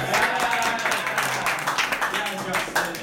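A small group applauds: steady, overlapping hand claps that stay fairly loud and even for about three seconds without fading.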